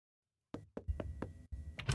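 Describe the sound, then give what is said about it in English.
Several sharp knocks rap on a wooden door in a quick, uneven series, fairly loud, with no voices present. “Isaac appeared behind the door that Ivy idly carried herself to after a knock broke her thoughts”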